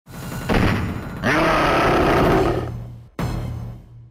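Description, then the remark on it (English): A harsh, gritty roar of a four-armed monster character from a video game released multiple times swells and rumbles for about two and a half seconds, then cuts off and is followed by a single sharp, heavy hit that quickly fades. “But the roar is like really low quality and the hit is not.”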